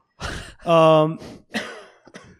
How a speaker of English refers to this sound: Excuse me. Okay, so... Coughing was part of it.